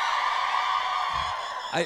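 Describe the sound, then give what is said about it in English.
A single strange, drawn-out yell from an audience member cuts through the crowd noise, rising and bending in pitch near the end, with crowd murmur underneath. “Yeah, that's the weirdest yell I've ever heard in my entire...”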